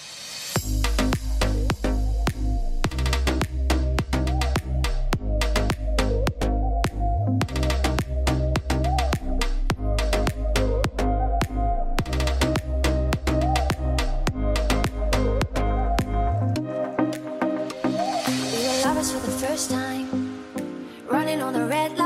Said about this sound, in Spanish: Ahora paramos 2 minutitos, como ya sabéis, tomo un poquito de respiro, que llevo mucho tiempo hablando y necesito beber agua, y escucháis un temita